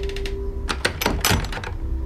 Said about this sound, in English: He said a few words of prayer, then solemnly ascended the stairs of the root cellar. He lowered its doors as if they were the lid of a coffin.